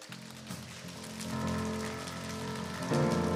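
A rapid, continuous drum roll, played before the winners of the Cleanest Dorm Contest are announced, patters on without a break, growing louder after the first second and swelling again just before it ends.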